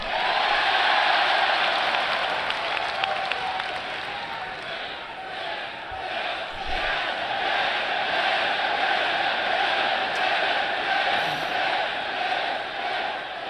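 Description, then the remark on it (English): A large, very partisan arena crowd roars with cheering and booing, a dense, loud wash of many voices that holds steady for about thirteen seconds without letting up. “Donald's going to find out soon this is a very partisan crowd.”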